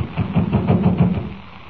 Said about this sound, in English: The door seems to be locked. Well, we'll knock. Funny. Nobody answers. No, just keep knocking till someone does answer.